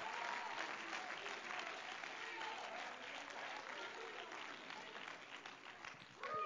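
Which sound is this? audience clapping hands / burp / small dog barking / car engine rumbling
audience clapping hands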